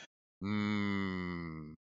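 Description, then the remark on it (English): A person imitates a dairy cow with one long, low, steady moo lasting over a second, loud, with no other sounds around it. “Just this dairy cow just walking in like,”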